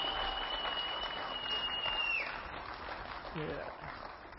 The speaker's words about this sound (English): Give the Lord a clap offering, would you?